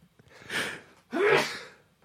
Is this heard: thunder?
no